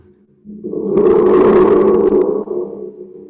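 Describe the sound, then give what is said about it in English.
A spring drum, a small instrument with a coil on a head and a chamber, gives off a rumbling, thunder-like roar that swells in after a brief pause, holds a dense, resonant growl for a couple of seconds, then dips and lingers. No voices. “Like I have just at hand here, I have this wonderful little instrument that's like a coil in a head. And just a chamber, you know.”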